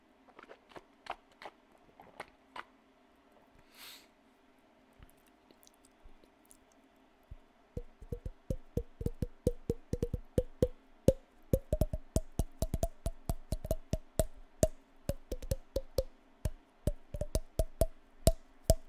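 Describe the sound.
Mouth percussion, a person playing a game called mouth drums: sparse clicks and pops at first, then a fast, steady run of sharp clicks and tongue pops with a low resonant tone, like improvised drumming made with the mouth. No talking.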